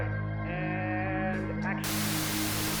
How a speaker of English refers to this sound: The screen cuts to static, then cuts back to reveal an out-of-focus close-up of a menu from Monks.